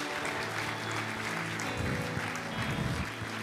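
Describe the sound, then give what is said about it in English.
An audience at a healing service applauds steadily throughout as a clap offering to thank God, a dense wash of many hands clapping, with faint voices and cheers mixed into the crowd noise. “Give him a big clap offering.”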